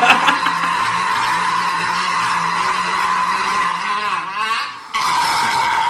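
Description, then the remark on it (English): A long, loud, rasping burp drags on for several seconds with a strained, squealing edge, briefly dipping before surging back, with no talking over it. “That is a burp for clarification, ladies and gentlemen.”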